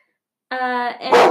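A dog named Bill barks: a drawn-out, tonal yelp followed by a short, rough bark, fairly loud against an otherwise quiet background.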